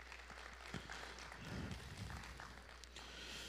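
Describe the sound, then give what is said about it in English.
A crowd applauds the moms, a steady, soft wash of many overlapping claps that continues evenly for a few seconds without any voices over it. “Everybody give moms a round of applause real quick.”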